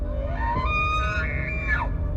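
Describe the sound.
A voice mimics a deer's bleat: one drawn-out, high, nasal cry that climbs steadily in pitch, holds, then drops sharply at the end, heard alone over a low background rumble.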